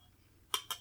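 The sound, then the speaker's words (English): Two bright, ringing clinks of cocktail glasses (Collins glasses) touching in a toast, a quick pair of short, high chimes over faint background hiss, with no voices. “Clink.”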